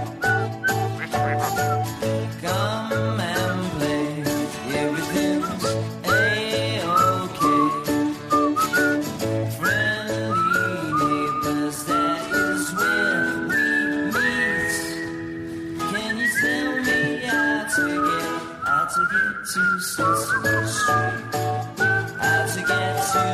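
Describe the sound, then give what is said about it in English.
Someone whistles a steady, wavering melody over a full musical backing, the tune rising and falling loudly throughout with a brief dip partway before continuing. No one speaks. “I'm sure you can whistle along.”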